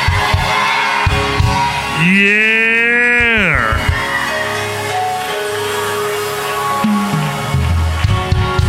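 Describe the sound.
An audience cheers and shouts for Jesus in a steady, noisy roar, with one loud sustained whoop rising above the crowd for about a second and a half near the middle.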